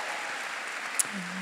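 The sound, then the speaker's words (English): A live show audience applauding for Gwen Blake, the merchandise seller, in a steady, dense patter of many hands, moderately soft, with a brief sharp click partway through and a low hum near the end. “I'm sure round of applause.”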